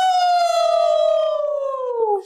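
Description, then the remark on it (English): A loud, sustained wolf-like howl from a human voice, given to welcome a guest, holding one steady, bright tone that slowly slides lower in pitch before cutting off after about two seconds. “Dude, I feel like we should just howl for him.”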